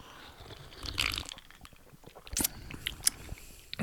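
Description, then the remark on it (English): Glasses clink together in a toast in a few bright, ringing taps, followed by sipping of a tequila drink and wet mouth sounds at a quiet level, with no talking. “Yeah, you got to clink and then drink.”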